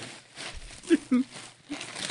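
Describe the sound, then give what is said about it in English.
Continuous rustling and crinkling of paper being pulled out of a box, with two short louder bursts near the middle and faint vocal sounds mixed in. “I gotta get all the paper out of the box.”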